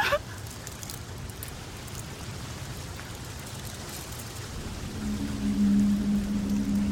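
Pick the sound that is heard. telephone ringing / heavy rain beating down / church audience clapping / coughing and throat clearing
heavy rain beating down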